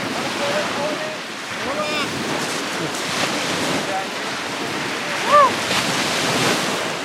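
Ocean surf washes steadily onto the beach at 12 Mile Beach in a constant roar, with faint snatches of voices and a brief high call partway through.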